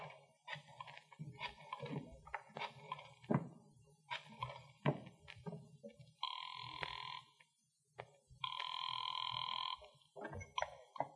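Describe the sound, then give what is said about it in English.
Someone placing a telephone call: a series of sharp clicks and clunks as the phone is handled and dialed, then two long buzzing ring tones, with no one talking. “And as I got to the phone, I knew that whatever else he was, the old sea dog was no liar.”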